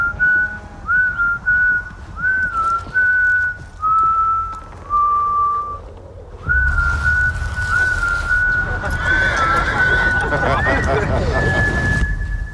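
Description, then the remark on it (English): Someone whistles a slow, eerie tune of sustained notes, the whistle of the character Phil from the film The Power of the Dog, directed by Jane Campion, first almost alone, then over a loud rushing, roaring background noise that swells up halfway through. “His role as Phil in The Power of the Dog, a bullying misogynist, took some intense preparation and lots of discussions with director Jane Campion, and his eerie whistle echoes throughout the film.”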